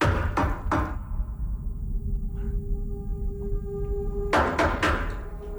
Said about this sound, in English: That's the knock part. The knock. That's the cabin door.